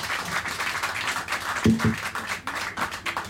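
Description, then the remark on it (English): Sustained applause from an audience for a panel, a dense wash of many hands clapping steadily with a brief low tonal blip partway through and no speech. “I'd love you to give it up. Thanks very much to our fantastic panel today.”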